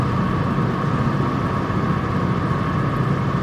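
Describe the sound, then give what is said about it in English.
A medium-sized boat engine drones steadily as the boat goes by, a continuous low rumble with a faint hum layered on top, holding an even loudness throughout with no voices. “There's a boat going by.”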